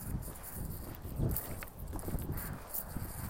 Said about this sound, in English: Can you guys hear me walking? I hope that's I hope that's a pleasurable sound and not an annoying sound.